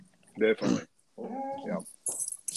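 A dog barks and whimpers excitedly in short bursts, with sharp yips followed by a drawn-out whine and a high squeal near the end.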